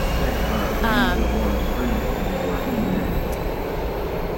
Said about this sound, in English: Wait, I'm just going to wait for the sound to get a little bit better just because there's two trains going.